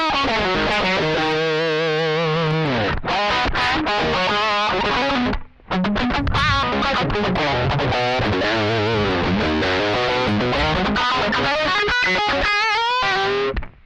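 Crunchy electric guitar lead with a boost pedal kicked in, playing fast single-note runs and bends, loud, with a brief pause midway and no talking.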